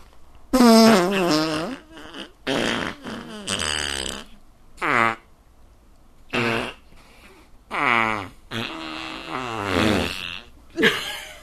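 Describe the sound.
A voice blows a string of loud, wet raspberry fart imitations, about eight bursts of varying length separated by short pauses, with no other talking.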